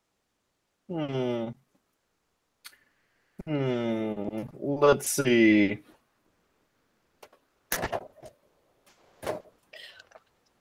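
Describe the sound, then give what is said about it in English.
A person speaks briefly, then a beer fridge is opened: a few sharp clicks and short rattles follow in quick succession, with faint clinking between them. “Let's open up ye olde beer fridge.”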